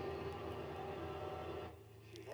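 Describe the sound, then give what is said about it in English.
A hot rod-like spaceship engine rumbles steadily with a low, rattling drone and a buzzy mechanical texture, easing off briefly before swelling back up at the end. “I like just the hot rod sound of this ship. I love how the engine is just rattling a bit.”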